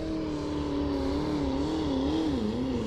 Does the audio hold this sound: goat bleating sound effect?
no